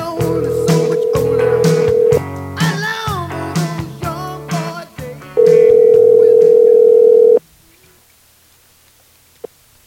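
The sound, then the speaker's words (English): A steady telephone dial tone gives way to a rapid run of keypad dialing beeps, then a long loud tone that cuts off into near silence, ending with one soft click. “And I'm going to get Diggler on the phone here. So let's give him a call.”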